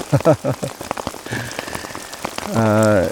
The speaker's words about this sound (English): Yeah, one of us forgot a tarp, so we're just both under we're both under my tarp at the moment. I thought you were joking, it might rain.